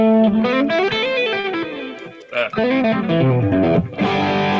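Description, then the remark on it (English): An electric guitar plays a smooth, connected line of notes using hammer-ons and pull-offs, rising and falling in pitch with a brief pause midway, loud and steady with no talking. “You might work on slurring or hammer-ons and pull-offs.”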